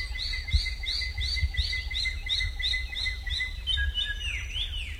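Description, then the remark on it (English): A Wallacean drongo gives its sisisia call: a steady run of about ten bright, high arching chirps, ending in a few thinner descending notes, over a low background rumble. “The drongo's sisisia call often comes just before troops of monkeys emerge from the forest to steal corn.”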